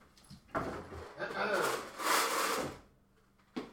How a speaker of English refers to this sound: So the dice. That's the dice tin. There's a nice spike for the sound recording.